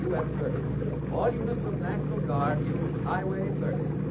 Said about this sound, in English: A rescue boat. All the rivermen help when there's a flood like this.